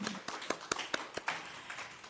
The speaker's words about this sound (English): Psalm 47:1. Come, everyone, clap your hands, shout to God with joyful praise. Come, everyone, clap your hands. Clap your hands.